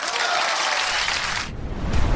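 Steady, dense applause from a crowd for the Atlas football team, loud, with a continuous hiss of many hands clapping that shifts to a rougher, lower texture near the end.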